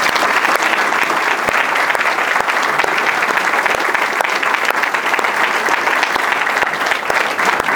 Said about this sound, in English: Each one has done a magnificent job and has served this church well, and they deserve our hearty thanks and our applause.